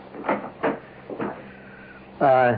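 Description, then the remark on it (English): A door being opened: three short, dull knocking clunks spaced unevenly over about a second, then a pause and a brief voice at the end. “Don't go near that door.”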